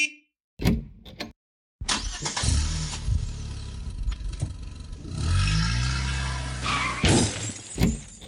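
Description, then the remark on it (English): A car door thuds, then a car engine cranks to life, revs and accelerates before ending in a sharp crashing impact as the car hits an old woman, with no voices. “That man just hit that old lady with his car!”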